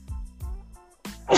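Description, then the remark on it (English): A person sneezes loudly and sharply, the burst following a couple of short breathy intakes. “Excuse me. Bless you.”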